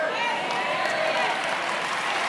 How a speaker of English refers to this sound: you're not even clapping because something is rebelling in your ear.